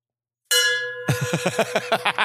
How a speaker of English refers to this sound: Just so you know, audio wise, that there really was a bell. He's going to ring it, so you know.